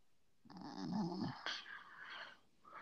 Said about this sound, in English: You heard that shit? Yeah, everybody went quiet for no reason. Some niggas whimpering. Why is he whimpering? You okay?